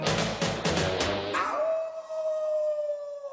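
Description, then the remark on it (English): A voice imitates a wolf howl, a long steady wavering tone that holds for about two seconds, following a few loud rhythmic bursts of noise at the start. “I'm a Teen Wolf. I'm gonna howl today.”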